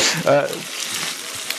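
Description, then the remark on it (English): Steady crackling sizzle of food cooking on a grill, a bright hissing spatter that fills the whole moment, with a brief voice-like tone rising near the start. “We got the sizzle. Yeah, we got a little sizzle going.”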